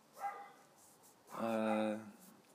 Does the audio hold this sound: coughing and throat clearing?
no